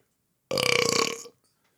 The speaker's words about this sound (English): Rate the burp first. Ah, that's like a one.